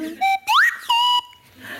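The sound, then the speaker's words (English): A slide whistle played in short, speech-like phrases in the style of the Clangers: three bright bursts of tone, one swooping sharply upward in pitch, with brief pauses between and no other sounds. “And could we possibly have another little listen at your whistle?”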